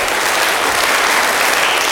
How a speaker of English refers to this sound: Great. Some of you gave them seven claps. Well, that is good because you appreciate what they have done.